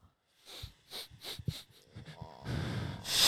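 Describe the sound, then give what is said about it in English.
Heavy, raspy breathing close to the microphone, a series of short wheezing huffs that build into a louder, rushing exhale at the end, with no talking. “We can't just keep heavily breathing into the mic.”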